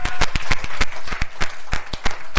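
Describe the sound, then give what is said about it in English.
A crowd claps together for the Springboks, as when they score, in a steady, fairly quick rhythm: sharp loud slaps repeating about five times a second with a busy wash of scattered clapping and noise between them. “I'd like the rest of us to like clap for the Springboks, like when they score, like in the last.”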